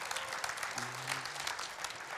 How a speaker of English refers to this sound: And I just wanna give it up for God. So even if you don't clap with me, I'm gonna clap because I think that's amazing.